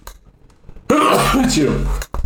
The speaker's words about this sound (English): I like how you just dabbed and sneezed. Yeah, I'm preventing the spread of germs, sneezing near your elbow.